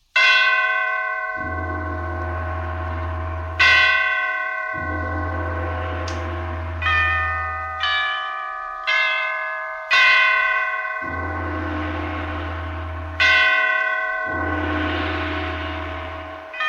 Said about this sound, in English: Catherine the Great had just died, and the great bells of St. Petersburg tolled their requiem. Tolled again the ascension to the throne of Paul I.